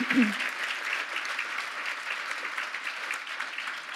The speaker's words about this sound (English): So we've got a few men and women in uniform here today. Give them a round of applause for all the incredible work they do.